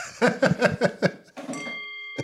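A Tibetan singing bowl is struck once and rings with steady, layered metallic tones that hang and slowly fade. It follows a short burst of lively voices.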